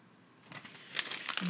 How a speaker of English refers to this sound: Boom! Seriously, sorry I boomed that, but my God, I threw the paper against the wall just then.